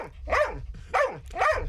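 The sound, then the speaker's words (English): A dog, asked to bark if it hates Jono and Ben's TV show, gives three short, evenly spaced barks, each a loud harmonic yelp that rises and falls in pitch, with no talking over them. “Give us a bark if you hate it. Oh, there we go.”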